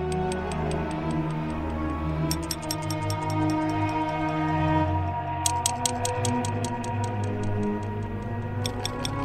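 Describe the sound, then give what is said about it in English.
Rapid, evenly spaced clicking and ratcheting made with children's toys, including the scoop of a toy digger, comes in three bursts. The sounds are crisp and bright, layered over a sustained, droning musical bed with no voices. “There are also some clicking and ratcheting sounds, in which I used children's toys to make.”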